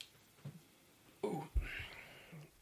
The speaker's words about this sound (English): Okay? Hold on, I got to burp again.